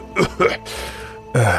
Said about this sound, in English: And that dust and ash that's in the air, it begins sticking to him, to his clothes, to his face, to his hands, and he's coughing a few times.